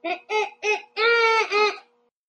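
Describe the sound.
A child's voice imitates a bald eagle call: three short, high-pitched yelps in quick succession, then a longer, loud, drawn-out cry that wavers and trails off.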